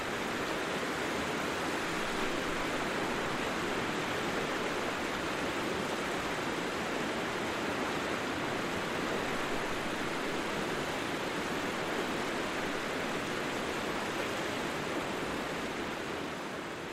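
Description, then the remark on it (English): A steady, unbroken rush of wind blended with flowing river water at the edge of a wind-swept hill by a river where sheep lie, a dense hiss that holds at an even level throughout with no voices or distinct events. “I drove down to the river and set up the road and T4 at the edge of a wind-swept hill, 5 feet high, where the sheep like to lay in the heat.”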